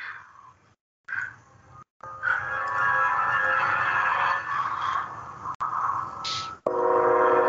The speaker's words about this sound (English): Uh-oh, here comes these leprechauns coming by train, guys.